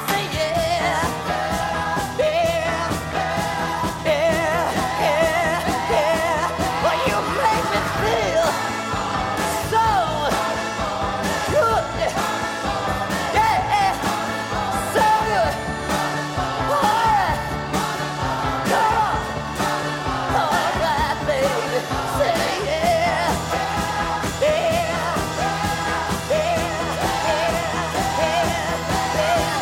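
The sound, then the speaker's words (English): A loud, full-band song recorded in the basement of the 1650 Broadway building at Allegro Studios, with people brought in off the street yelling and singing backup together, while sharp handclaps keep a steady beat throughout. “We had people from off the street come in screaming and singing background and clapping their hands and everything.”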